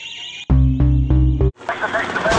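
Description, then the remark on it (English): A loud, harsh fire alarm, just pulled by a person, blares for about a second in a buzzing, pulsing tone, then cuts off abruptly into a jumble of busy background noise. “You just pulled the fire alarm.”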